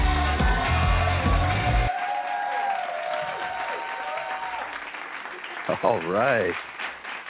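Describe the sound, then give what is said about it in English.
A crowd applauds and cheers loudly, with whoops and shouts rising over steady clapping; a brief burst of music opens it and a voice calls out near the end. “What a good crowd.”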